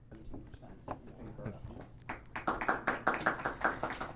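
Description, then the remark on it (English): Audience applause for the speakers at the end of a debate starts up after a couple of seconds of murmured voices, building into steady, sharp clapping from many hands that stays loud and fairly rhythmic to the end. “I want to give our speakers a huge round of applause.”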